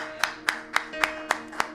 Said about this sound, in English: Let's give God a round of applause.